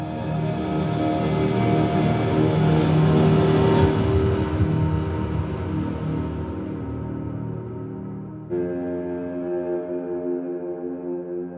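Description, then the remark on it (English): A car engine roars steadily and then drops in pitch with an abrupt gear shift as the car speeds down a street at around 2 a.m. at night. No voices are heard. “One of them reported hearing a car speeding down the street at around 2 a.m. that night.”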